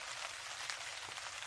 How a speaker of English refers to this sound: Or maybe I'll play some ambient rain. Like, ambience, please.